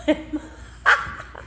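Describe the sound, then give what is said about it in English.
A dog gives a few short, sharp yips, with a louder bark near the end. “But my dog's looking at me like, Mom?”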